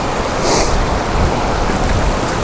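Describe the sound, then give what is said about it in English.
Steady, loud roar of wind blowing outdoors at an old stone bridge, a broad rushing, buffeting noise with no pauses and no voices. “And now it's windy.”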